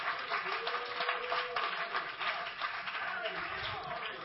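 A crowd claps hands while being seated, a dense, steady patter that keeps up for several seconds without a break, with a murmur of voices mixed underneath.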